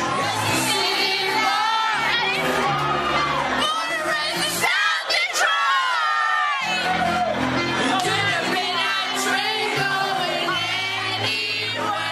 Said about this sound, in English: And as soon as the line South Detroit comes up, everybody screams it at the top of their lungs and then goes back about their business, getting ready for the next inning.